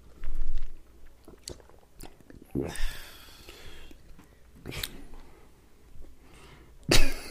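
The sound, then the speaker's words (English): Gulping of liquor from a cup into the mic, with several wet swallowing and mouth noises spread across the moment and a louder, sharper gulp near the end, no talking. “We did not need to hear your gulp like that.”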